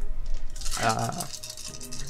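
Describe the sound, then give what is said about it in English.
Many dice rattle and clatter in a short, busy burst of hard clicks, loudest in the middle, then settling into softer scattered rattling, rolled for damage in a tabletop role-playing game. “I hate the sounds of how many dice.”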